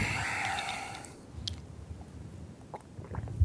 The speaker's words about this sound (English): Let me get a sip of water.